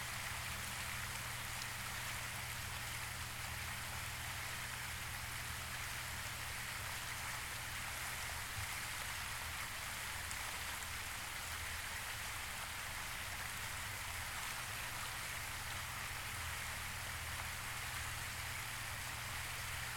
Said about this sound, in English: Just let go and focus on the sound of the water.